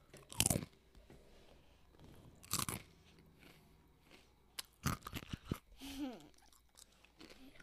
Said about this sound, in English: Yeah, oh, you're having another pretzel. Sound bites. This is the cutest sound of a pretzel. You can chew it into the microphone.